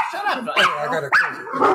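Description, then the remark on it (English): Three dogs bark in a few sharp, excited bursts spaced roughly half a second apart, fairly loud, with a faint voice murmuring underneath, set off by someone making a delivery. “Somebody's making a delivery, so it makes the dogs all wild.”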